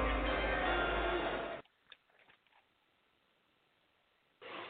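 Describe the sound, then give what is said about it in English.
A loud, dense burst of draft countdown music, played as a contestant goes on the clock for a draft pick, cuts off abruptly, leaving near silence broken by a few faint clock-tick clicks before the music surges back briefly at the end. No one speaks. “Hit that draft music.”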